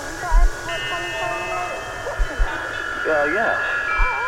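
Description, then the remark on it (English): A washing machine on its spin cycle gives off a steady, droning whir with a high tonal whine and a few low thumps, while voices murmur faintly over it. “It's the washing machine's going through its spin cycle.”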